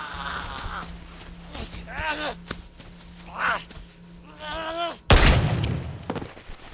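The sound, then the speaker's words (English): A single loud gunshot blast, from a gun held right in a creature's face at close range, cracks out near the end and rings off briefly, after a stretch of wavering, strained vocal moans. “I'm gonna take that gun and just stick it right in this thing's face and pull the trigger.”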